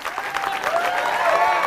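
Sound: audience applause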